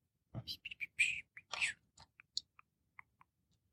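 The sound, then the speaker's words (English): Two ten-sided dice, rolled for a D100 roll, clatter and tumble across a surface, a dense rattle at first, then a handful of separate clicks that thin out as they settle. Quiet, with no voices. “One 10-sided dice and then another.”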